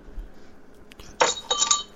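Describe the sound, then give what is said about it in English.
Ice being smashed with bare hands: a soft knock, then a sharp crack followed by a burst of bright, glassy clinks and rattling shards over about a second, with no talking. “Smashing ice with my bare hands because I'm that kind of a dude.”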